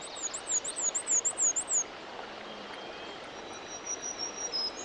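black-throated green warbler song

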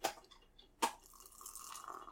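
beer being poured

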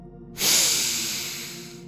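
deep breath

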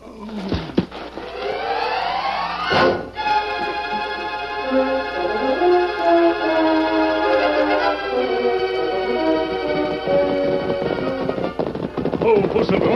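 gunshot

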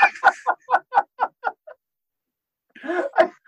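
chicken clucking

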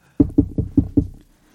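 knocking

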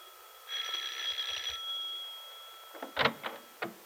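doorbell ringing

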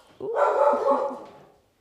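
dog barking

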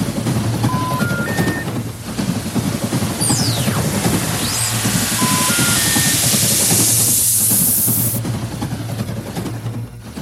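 cat purring

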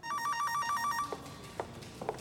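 telephone ringing

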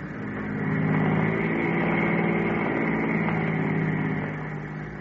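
car engine running

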